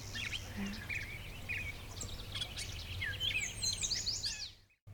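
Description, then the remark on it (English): Bright, sweet yellow warbler phrases repeat over several seconds amid other chirping birds, set against a steady low hum, before cutting off abruptly near the end. “There, that beautiful clear, sweet, sweet, sweet, shredded wheat. That sort of thing. That's a yellow warbler.”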